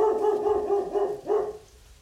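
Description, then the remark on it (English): A puppy yaps in a house in a quick run of high, tonal barks, pauses briefly, then lets out one more drawn-out bark. Fairly loud, with no talking. “It sounds like someone's puppy wants to start with I'm gonna have to beat the dog.”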